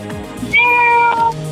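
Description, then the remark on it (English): A single drawn-out meow, imitated by a human voice, rises after a short lead-in and holds steady for most of a second before tailing off, loud with no other talk. “This sounds like a cat.”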